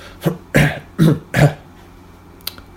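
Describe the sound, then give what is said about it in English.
A dry cough fit: a small clearing of the throat followed by three harsh, evenly spaced coughs, then quiet with a faint click. “I cough.”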